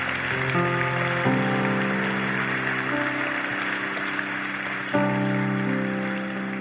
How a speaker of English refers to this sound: Come on, let's give him a hand. This is huge.